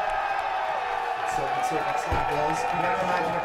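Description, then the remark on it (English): A dense, steady wash of crowd noise, cheering and scattered applause blending into a continuous roar with a few louder bursts, sounding like a large audience; a crowd sound effect played in the background over headphones. “you never imagine a crowd of people at an IMYT. That's what's happening.”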